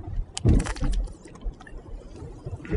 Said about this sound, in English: So, as I take a sip of my ginger ale.